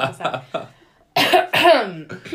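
Two loud, harsh coughs follow a brief quiet pause, with softer throaty sounds just before and a couple of smaller coughs trailing after.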